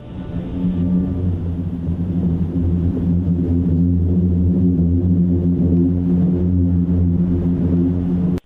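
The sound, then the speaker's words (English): Booming sand dunes, probably from sand grains sliding against each other down the slope, give off a loud, steady low drone for about eight seconds, a deep hum with stacked tones and a grainy rumble, ending abruptly. No voices. “it was probably just the noise of the grains sliding against each other as they slip down the dunes”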